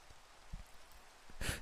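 Soft, steady rain hisses throughout, a faint even patter with a few low thumps, and a short, louder rush of noise swells up just before the end. No one speaks.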